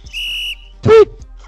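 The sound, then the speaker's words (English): A shrill whistle blast rings out steadily for about half a second, followed shortly by a second, harsher and louder burst. Both stand alone with no talking. “Two fouls, two quick ones there, boys. Someone's really blowing their whistle or not.”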